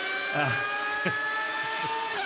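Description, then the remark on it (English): A race car engine screams at high revs, holding a steady, piercing whine with rich harmonic overtones throughout. It is loud, with brief rumbling flutters underneath and no voices. “it's got a funny sort of sound that the ring would miss, doesn't it? Sounds a lot like a Ferrari at Monza.”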